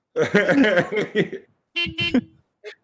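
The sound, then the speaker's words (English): Car horns honk in a cluster of overlapping blasts, then a couple of shorter honks after a pause, ending with a faint brief toot. “I don't know if we're in a traffic jam or if I'm killing.”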